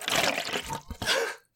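An eggnog drink being stirred up in a glass, a brief wet swishing and sloshing in two bursts separated by a short pause, then quickly dying away. No voices.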